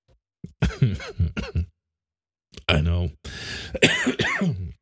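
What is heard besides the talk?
coughing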